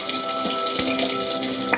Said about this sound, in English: That's the water he's rinsing with.